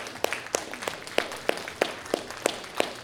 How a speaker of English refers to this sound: And when you clap for dad, you clap for God, because he's the ultimate father.